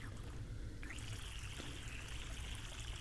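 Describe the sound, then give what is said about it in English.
Water runs steadily from a tap as someone's hair is washed, a continuous trickling and splashing flow with a faint high tonal whine starting partway through, no voices. “I'm going to start my water and wash your hair real quick. Alright, so here goes the water.”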